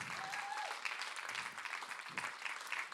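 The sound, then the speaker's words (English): A steady round of applause, dense crackling claps sustained throughout at an even level, with a brief whistle-like tone early on rising above the clapping. “Are you ready for another rapturous round of applause?”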